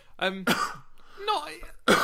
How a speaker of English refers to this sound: just cough through my introduction. That's what I'm here for.